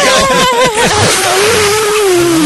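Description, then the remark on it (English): A loud, steady vacuum sucking roar, a Mega Maid sound effect, with a droning whine that slowly drops in pitch across the whole stretch, with no voices. “Sucking sound.”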